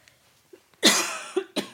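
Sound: coughing fit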